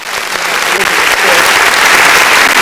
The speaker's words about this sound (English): Applause? Where the applause?